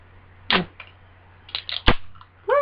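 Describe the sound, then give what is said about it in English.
A can of Epic Brewing Brainless Raspberries wild ale cracks open with a sharp metallic click and a short fizzy hiss, followed by a few small clicks and rustles, with no talking. “He popped the top.”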